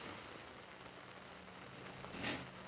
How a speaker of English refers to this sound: At this point in the interview, it had started to rain, and we moved our chairs into a drier place, and we paused, hoping the rain would stop.